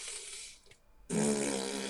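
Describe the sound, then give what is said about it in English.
Someone blows two raspberries with their lips as a breathing exercise: a hissy, breathy buzz that fades out, a brief pause, then a louder, longer flapping raspberry with a low rattling pitch, with no talking. “And I do, the one I do is I'll have them do raspberries.”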